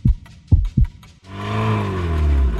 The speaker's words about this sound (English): In fact, you can probably hear my heart thumping with anticipation. Listen.